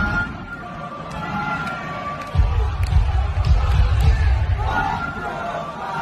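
large crowd chanting

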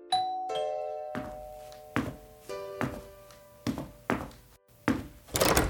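doorbell ringing

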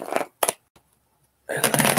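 shuffling tarot cards

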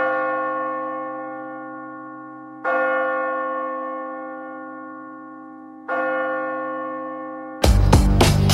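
church bell tolling

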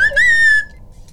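slide whistle being played

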